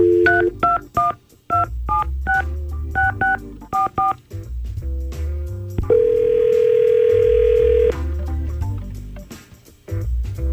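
A quick run of touch-tone dialing beeps, about a dozen short bursts, followed by a longer, steady ringing tone as hosts of the Y100 radio station phone a listener, all over a low, continuous background bed.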